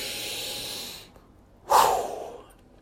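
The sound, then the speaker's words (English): A deep breath: a long, airy inhale lasting about a second, a short pause, then a forceful exhale that starts strong and fades out. No talking. “I didn't have to have that breath right there.”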